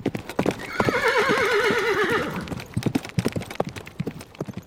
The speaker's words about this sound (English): One sunny day, the she-wolf heard the sound of horses' galloping hooves.